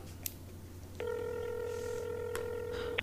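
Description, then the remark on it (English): A phone number being dialed to call the landlord: a steady electronic tone holds for over a second, bracketed by sharp clicks and a brief final beep, clear over a low background hum, with no voices. “I'm gonna give the landlord a call to see if it's some kind of plumbing thing.”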